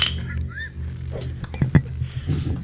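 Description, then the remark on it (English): Glass Corona beer bottles clink together in a quick toast, two or three sharp knocks in the middle, over a low hum and faint background murmur. “So we're not sponsored, but we've got a couple Coronas here.”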